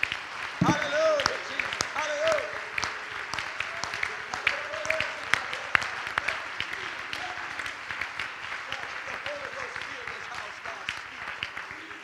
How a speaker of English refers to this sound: In the name of Jesus, somebody clap your hands in the house. Come on, clap your hands like you mean it. Come on, clap your hands like you really want it.